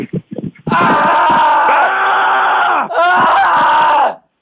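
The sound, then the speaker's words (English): Two voices scream loudly in unison to seal a promise to do an open mic tomorrow, a long sustained shriek of about two seconds, a brief break, then a second shorter joint scream, preceded by a few quick breathy sounds. “Scream it!”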